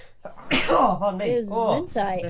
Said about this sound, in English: Bless you. Bless you.